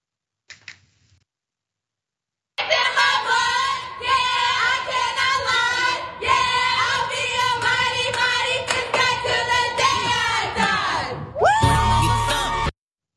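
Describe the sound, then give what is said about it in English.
A Fisk gymnastics team rally chant before an event: many voices shouting in unison over sharp rhythmic claps and snaps, loud and steady for about ten seconds, ending with a rising whoop and cheer. “The team posted on their rally chant before the event on Instagram.”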